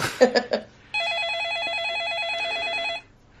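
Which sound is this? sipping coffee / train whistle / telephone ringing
telephone ringing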